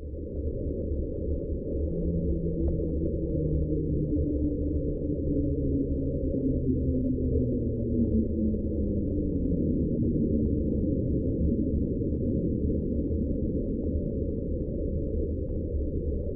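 An underwater hydrophone recording of the 'Slowdown' sound, heard May 19, 1997, a couple hundred miles north of Easter Island: long, faint tones slowly gliding downward in pitch over a steady, dense low rumble of ocean noise, with no voices.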